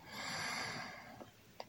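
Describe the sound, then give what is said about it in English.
A slow, deep breath drawn in through the nose during a relaxation breathing exercise, an airy, hissing inhale that swells and then fades softly, with a couple of faint clicks near the end. Quiet, with no talking. “Now we're going to move into the three-layered breath, breathing in, hold one, two, three, in, hold one, two, three, in, hold one, two, three, and out.”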